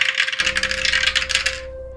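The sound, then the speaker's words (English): Dice rattle and clatter in a quick, dense burst of clicks for about a second and a half, then stop, leaving a faint steady hum underneath. No one speaks. It is a final roll in a role-playing game, coming up 42. “That was a 42 on the dice plus 30 to get 72 there.”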